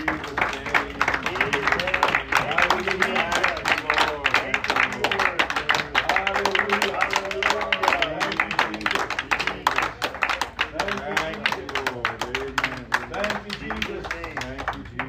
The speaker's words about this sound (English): Let it be done, Lord, and give the Lord a hand clap before you sit down.